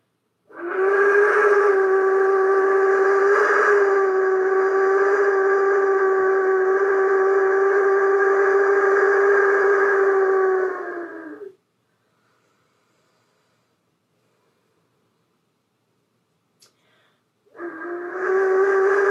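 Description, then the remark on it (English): A wind whistle, used to evoke wind blowing through trees, sounds one long, steady, breathy tone for about eleven seconds, stops, and after a few seconds of silence begins again. No one speaks. “let's just take three wind breaths, three whistles with this, either, again, your breath or your wind whistle, and let it be that the wind blowing through the tree, whistling through the trees, whistling through you and around you.”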